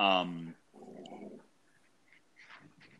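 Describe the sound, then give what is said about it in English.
A female Labrador retriever named Dottie lets out a loud, sharp vocal burst, then a lower, rumbling growl at her owner for about a second before things quiet down to faint, scattered sounds. “That's my lab, if anyone's curious. And she's like growling at me right now for some reason.”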